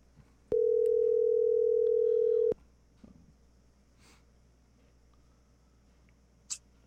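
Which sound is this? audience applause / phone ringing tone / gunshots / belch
phone ringing tone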